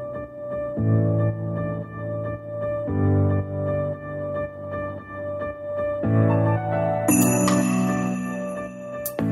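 Sparse, sustained music plays with steady low tones, then bright, shimmering jingles of a single sleigh bell enter near the end at the beginning of the verse and ring over the track.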